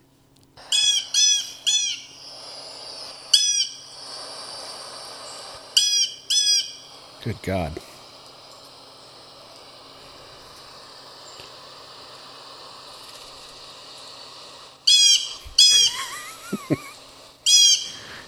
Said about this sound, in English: Want to listen to a bird? Yeah. Okay, ready? Love to.